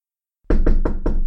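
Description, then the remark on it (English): Four firm knocks on a great oaken door to a headmistress's office, evenly spaced, each with a deep, resonant thud. No voices accompany them. “There came a knock upon the great oaken door that had been Dumbledore's”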